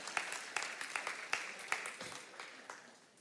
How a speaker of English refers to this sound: you can clap. I think that's good. Somebody got my message at least.